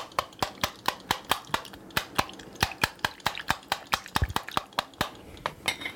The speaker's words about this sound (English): You're splashing something around. What's right? Whisking it up. Well, you're putting air bubbles in there, maybe?